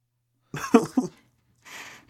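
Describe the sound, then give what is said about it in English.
A single sneeze bursts out with a voiced, two-part snap, followed after a short pause by a soft breathy exhale or sniff. “Bless you.”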